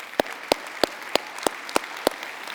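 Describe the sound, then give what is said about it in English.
A crowd applauds for the senior pastor in a steady wash of clapping, with sharp, evenly spaced claps standing out about three times a second. No one speaks. “And so if we could just clap it up for our senior pastor,”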